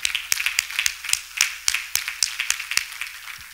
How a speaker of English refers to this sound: Clap your hands one more time.